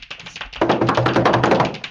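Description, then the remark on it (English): A quick drum roll tapped out by hand, starting with a few light taps and then swelling into a fast, steady, loud patter of dense, even beats that runs to the end. “All right, drum roll.”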